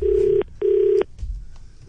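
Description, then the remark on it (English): A telephone ringback tone heard through the line as a call is placed to a random person: two steady, buzzing rings separated by a short pause, fairly loud, followed by a faint low background hiss. “I just phone up a random and ask a bunch of ridiculous questions, all for the sake of this beautiful country.”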